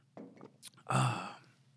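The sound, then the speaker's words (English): A quick slurping sip of hot coffee, then a loud, contented breathy "ahh" exhale that fades out. No words are spoken. “I'm going to go ahead and sip some coffee before I answer this question.”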